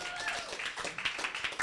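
A game-show audience claps for the next player in a dense, steady patter of overlapping hand claps lasting under two seconds, fairly soft overall, with a faint trace of voices mixed underneath.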